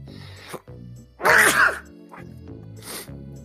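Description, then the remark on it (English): A loud sneeze bursts out after a brief breathy inhale, followed by a smaller, quieter nasal burst a moment later, with a low hum underneath. “Let's give them something to sneeze about.”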